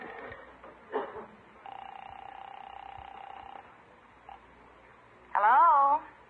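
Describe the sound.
A telephone being dialed: a few soft clicks, then a steady, level tone holds for about two seconds before fading, and a short louder voice-like burst follows near the end.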